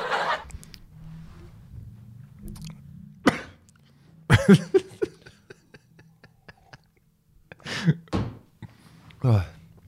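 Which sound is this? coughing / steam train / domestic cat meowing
coughing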